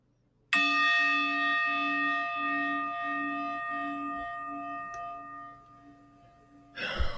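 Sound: bell ringing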